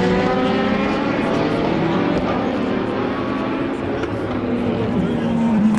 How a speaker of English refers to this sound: This is quite far back. There we go, Corvettes. The Corvettes really rumble, don't they,